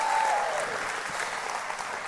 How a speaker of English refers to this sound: I want us to give both of our bands at both of our campuses a huge round of applause.